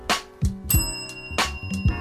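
Bright, ringing bell strikes repeat in a steady rhythm, their shimmering tones lingering over deep, booming low thumps and sharp percussive hits, loud with no talking.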